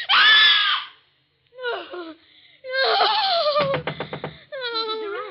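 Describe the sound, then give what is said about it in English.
A woman screams in panic from a nightmare while tossing in bed in a fretful sleep: a loud, high-pitched cry, then a short gap and a string of strained, wavering shrieks and sobbing wails. “Why were you screaming?”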